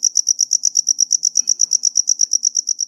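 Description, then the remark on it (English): A cricket chirps steadily, its shrill pulses repeating in a fast, even rhythm of about eight per second with no other sounds around it. “Crickets are so well known for their songs, they're even named after it.”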